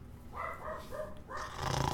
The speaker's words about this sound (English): And my dogs are barking.